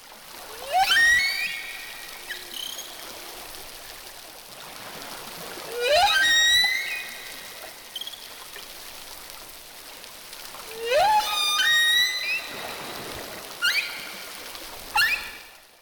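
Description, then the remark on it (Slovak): Whale song made of bursts of rising, high-pitched whistles, each sweep stacked with bright overtones, returning in separate bouts roughly every five seconds over a steady watery hiss. “A potom v tretej verzii sú zapískania už len dve a namiesto toho završenia sú tam taký iný typ piskotu.”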